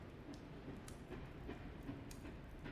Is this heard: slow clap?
no